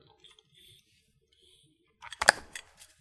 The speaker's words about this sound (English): After doing all this reading, I just briefly want to have a sip of water.